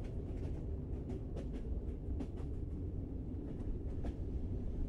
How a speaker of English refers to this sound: You hear the train going over the tracks, and you can feel the scene.